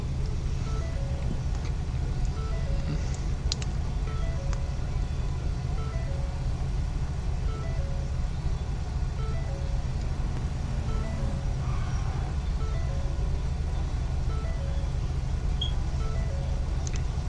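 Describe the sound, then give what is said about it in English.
A heavy tow truck engine rumbles low and steady, idling and creeping slowly, with a faint repeating melodic tone drifting over the constant motor drone. “There's a tow truck.”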